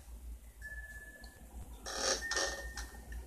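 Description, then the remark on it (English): A dinner bell, moving and hitting the sidewall, rings with a thin sustained tone, then two louder clanging strikes close together, followed by fainter lingering rings over a steady low hum. “The dinner bell is hitting the sidewall going, ding, ding.”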